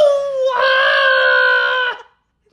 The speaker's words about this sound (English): A scream. 58 seconds in. That's a new record.